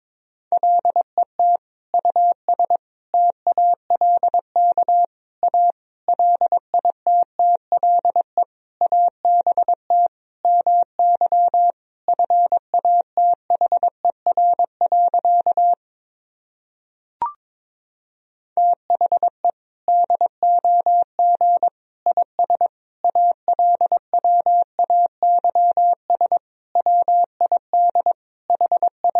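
Rapid Morse code sending a sentence made from common words and abbreviations at 22 words per minute, as a single steady mid-pitched tone keyed in quick dots and dashes, with a short pause and a soft click partway through before the beeping resumes.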